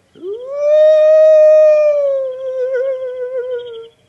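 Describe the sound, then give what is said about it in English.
A single long, drawn-out hooting cry from a human voice imitating an owl as a signal, rising quickly, holding steady, then wavering before it fades out. Fairly loud, with no talking. “Hear that? What? That owl.”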